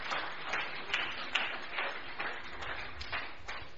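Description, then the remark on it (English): An audience claps its hands together at the speaker's call, in a dense, steady patter of overlapping claps, with a few sharper slaps standing out, lasting the whole few seconds at an even loudness. “Clap your two hands.”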